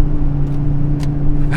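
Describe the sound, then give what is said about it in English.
Steady low engine drone and road rumble inside a moving car on the drive home, with a constant hum and a couple of faint brief clicks or rustles near the end. No one speaks. “Just spitting truths by myself in my car on the drive home.”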